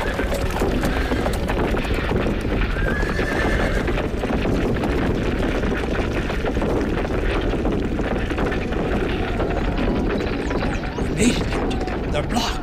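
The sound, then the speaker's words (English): Horse hooves clop steadily and busily as a horse pulls hard on ropes, neighing and whinnying over a dense, noisy bustle that stays loud throughout. “Yes, thanks to that magnificent horse.”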